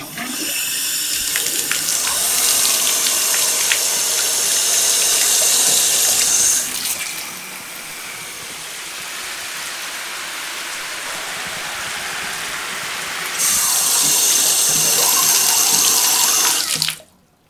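River water gushes steadily from a pipe into a house shower as someone bathes, about 10 gallons, a loud hissing flow that softens and drops to a lower rush midway, then surges back to full force before cutting off abruptly.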